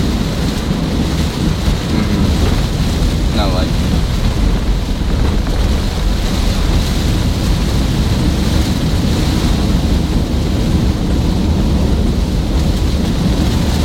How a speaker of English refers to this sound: But it's rainy right now.